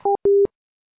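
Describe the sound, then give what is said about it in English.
A telephone tone plays after a call hangs up: a short electronic beep followed by a longer, steady one, clear with nothing else around it. “Sir, I'm going to hang up the phone.”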